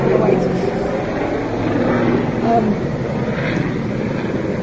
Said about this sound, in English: Helicopter, London, helicopter.